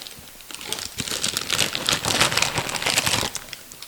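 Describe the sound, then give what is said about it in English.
Continuous crinkling of a plastic packet of Barbecue Shapes crackers while they are eaten, dense crackly bursts of rustling that swell and fade over a few seconds, with no voices. “What you eating there? Barbecue shapes.”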